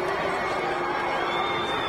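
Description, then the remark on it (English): A large WWE Monday Night Raw crowd gives an unenthusiastic reaction to Seth Rollins versus The Fiend at the end of the show: a steady, dense wash of crowd noise with scattered shouts and whistles, no clear cheering swell, holding at an even level throughout. “And as you can tell by the crowd, they're still not buying Seth Rollins on this one.”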